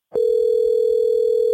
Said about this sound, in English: So without further ado, let's get him on the phone and let's give him a call right now.